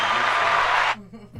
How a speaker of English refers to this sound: Little applause there.